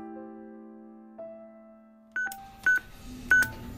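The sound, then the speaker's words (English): A steady low hum gives way to a handful of short, bright electronic beeps from a security keypad for getting into Mountain Lake Seniors Community, pressed at an uneven pace, each a clear touch-tone pip. “There are three security keypads and heavy swinging doors to get me into Mountain Lake Seniors Community.”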